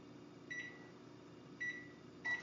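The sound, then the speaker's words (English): A microwave oven, started by a voice command to an Alexa assistant to run for 2 minutes, hums steadily while a few short electronic beeps ring out at uneven intervals, clear, with no talking. “Alexa, microwave 2 minutes.”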